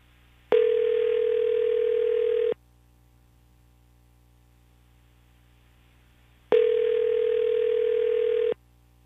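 A phone line ringing tone sounds twice, each steady electronic burst lasting about two seconds with a long silent pause between, clear and fairly loud with no voices.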